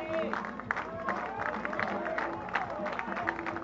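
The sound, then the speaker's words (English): A large baseball stadium crowd cheers and claps steadily, a dense roar of voices with scattered sharp claps and shouts rising and falling throughout, sustained, in the fifth inning of a night game against the Sooners, with two strikes on the batter, encouraging the pitcher to finish the inning. “And now the crowd will try to encourage Eddie Campbell to finish off the Sooners here in inning number five.”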